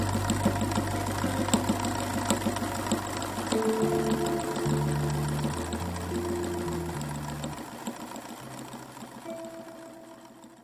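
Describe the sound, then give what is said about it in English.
A sewing machine runs steadily with a rapid mechanical chatter, fairly loud, while low sustained tones shift pitch beneath it; no one speaks. “In this episode of Refrangible, the object at the center of our conversation is the sewing machine.”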